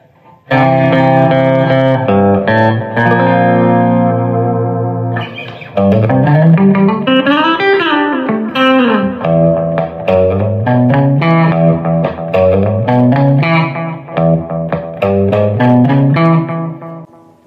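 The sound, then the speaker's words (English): An electric guitar with both pickup switches up, putting its pickups out of phase, plays a loud riff of sustained chords and bending single notes with a thin, nasal, hollow tone, lightly effected, with no voices. “And then with both switches up, you get them out of phase.”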